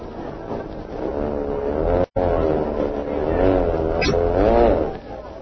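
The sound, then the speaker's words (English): A propeller plane's engine drones loudly and steadily as the plane comes in to land, its pitch swelling and dipping as it arrives, with one abrupt momentary dropout partway through. “The plane will be up here in a minute.”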